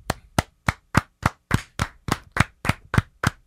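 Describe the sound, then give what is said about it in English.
A slow, steady round of applause from what sounds like a single pair of hands: about a dozen sharp, evenly spaced claps, fairly loud, with no voices. “Round of applause.”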